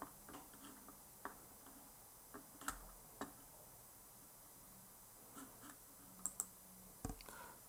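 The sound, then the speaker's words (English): Irregular clicks of computer keyboard keys being pressed while typing, quiet, with short pauses between bursts of keystrokes and no talking. “I'm typing.”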